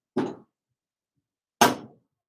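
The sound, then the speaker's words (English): Two sharp knocks of a glass beer bottle striking a metal drawer handle, making dents in the handle, about a second and a half apart, each with a brief ringing decay and no voices. “What if you do it on the metal handle of the drawer?”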